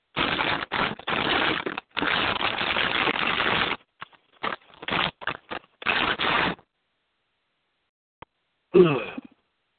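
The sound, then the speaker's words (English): Loud ripping and crinkling of plastic sheeting as Poopy Dog, a dog, tears the plastic off an air conditioner: a long rough tearing stretch followed by shorter intermittent tugs and pauses, then one brief sharp burst near the end. “Poopy Dog is tearing off the plastic over the air conditioner, thinking that there's a mouse inside.”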